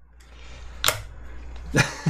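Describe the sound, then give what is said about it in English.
Two sharp hand claps about a second apart, made as an audio check, bright and snappy over a faint steady hum, followed by a softer thump at the end. “I'm clapping.”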